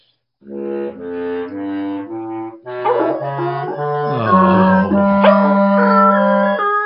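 A few steady instrument notes play alone as someone practices for a band, then a dog joins in with long, wavering howls that rise and fall over the sustained tones, loud until the end.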